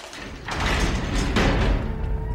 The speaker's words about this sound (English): The door opens up and Wilson pokes his head into the room.